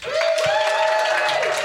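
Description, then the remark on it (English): An audience in Portland claps steadily throughout to vote for talking about a talking budgie, a dense patter of hands with a sustained, high voiced cheer or whoop riding over the applause. “Clap if you want to talk about the talking budgie.”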